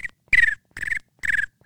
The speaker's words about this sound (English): Crickets. That's what I hear every time I explain that timeline.